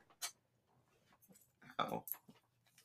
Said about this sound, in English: There's also a dog in here, if you couldn't tell. Third member of the podcast, Dog, has joined.